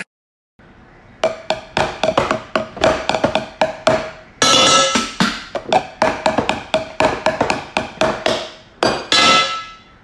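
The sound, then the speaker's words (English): Pots and pans are struck in a fast, irregular barrage of loud metallic clangs with a ringing pitched tone, continuing for several seconds with no voices. “Well, I've managed to settle Andrew down during me literally hitting the pots and pans of that segment.”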